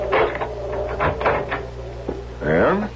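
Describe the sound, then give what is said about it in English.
A house's front door being opened by a woman letting herself out: a series of latch clatters and clunks, followed by a drawn-out creaking of the hinge as it swings. “Starting with the moment when, after sneaking successfully past the door to her father's medical office, she is just about to let herself out the main door of the house when...”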